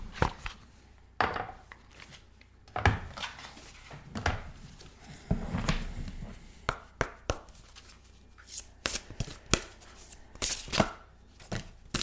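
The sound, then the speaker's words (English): Tarot cards being shuffled for a reading, a series of crisp, irregular slaps and papery rustles in quick bursts over twelve seconds, with no one speaking. “So let me open this up, give it a shuffle, and see what we get today.”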